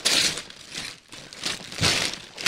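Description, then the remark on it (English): Santa-themed wrapping paper rips and crinkles in several rough, noisy bursts with brief pauses between, as a present, a bread pillow, is torn open by hand. No one speaks. “And the Santa paper is from 2 years ago.”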